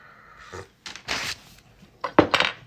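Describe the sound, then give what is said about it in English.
A coffee cup clinks and scrapes against a hard surface, with a soft sip between the sharp, bright knocks. A few short, moderately loud bursts, and no talking. “Yeah, take a sip of some coffee.”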